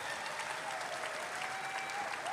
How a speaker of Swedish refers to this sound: En applåd för vårt ljud- och bildteam som är så grymma där nere.